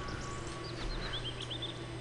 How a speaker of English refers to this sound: Birds chirping. That's a good sign.